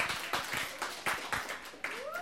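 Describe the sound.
An audience claps together in a dense, steady burst of applause, with a few voices and a short rising whistle near the end.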